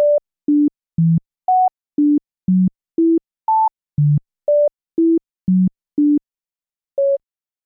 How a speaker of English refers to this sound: Diana Deutsch calls this the phenomena of the mysterious melody. A series of notes played an octave apart come across as just beeps, completely indiscernible as a melody.